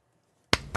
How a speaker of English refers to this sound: Claps.